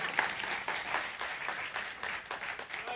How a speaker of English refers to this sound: You can clap now.